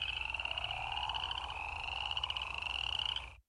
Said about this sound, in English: So you should be able to hear in there spring peepers, you should hear cricket frogs, chorus frogs, as well as the real loud snore in the background. So those are the crawfish frogs.